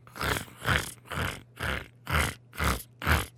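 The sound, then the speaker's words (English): A voice mimics footsteps on crunchy snow: seven harsh, breathy crunches in a steady walking rhythm, each a loud gritty burst separated by short pauses, with a faint low hum underneath. “Second sound is walking on crunchy snow, which is all that we have left now.”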